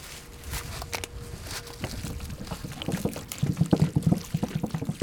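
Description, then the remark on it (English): Water is poured steadily by volunteers onto a newly planted dogwood or redbud sapling, a continuous splashing gush that grows louder and more gurgling toward the end, with no talking. “Yeah, we need some water for it, though.”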